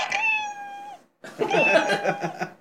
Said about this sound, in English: And every single time I open the shower, I look out there, and he's just sitting there looking at me like, meow, meow, and stuff like that.